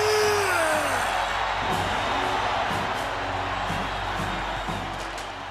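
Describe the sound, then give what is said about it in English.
A huge arena crowd roars and cheers without pause as Bill Goldberg becomes the new heavyweight world champion, a loud dense wall of voices with a falling whoop near the start and faint rhythmic bursts of live, not piped-in, chanting underneath. “The crowd go completely and utterly insane. You can tell that these chants are not piped in, and indeed, nor should they be.”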